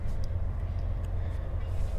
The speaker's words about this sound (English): A train is moving slowly, with each car stacked neatly with coal. So I am sitting out next to a Union Pacific train going by.